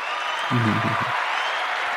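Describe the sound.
Steady, dense clapping fills the whole clip at a moderate level, with a brief cheering voice rising over it partway through.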